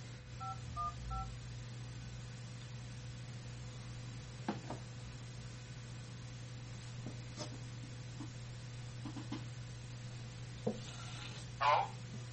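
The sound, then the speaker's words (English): A quick burst of touch-tone keypad beeps as a caller enters a phone number at an automated phone-line prompt, followed by a steady low line hum with occasional faint clicks and rustles. “If you do not know your file or phone number, please enter your phone number now.”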